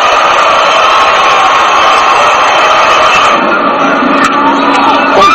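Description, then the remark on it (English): A large opposing stadium crowd roars and cheers in a standing ovation for Cal Ripken after his second home run of the night, number 391 of his career, a loud continuous wash of voices and clapping with no distinct pauses, swelling slightly toward the end. “It is now 11-0 Orioles, and Ripken is 3-for-3 with two big flies, and he is giving an ovation from the enemy crowd, and many stand.”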